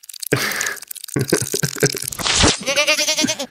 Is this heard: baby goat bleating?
yes